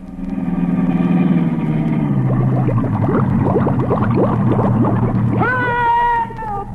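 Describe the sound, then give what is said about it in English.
A sealed-up car's engine drones steadily as it is driven into a 100-foot-deep bay, then loud gurgling, bubbling splashes take over as the car plunges into the water, ending with a rising whistle-like tone. “I don't need a bridge. I'll drive across the bay.”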